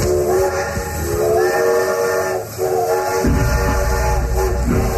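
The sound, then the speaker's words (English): A steam train whistle sound effect, played during a charity call-in broadcast to announce the Train Teddy Bear Express, blows in long sustained harmonic tones over hissing steam and rumbling locomotive noise, with a brief dip before the whistle sounds again. “And that sound means it's time for the Train Teddy Bear Express.”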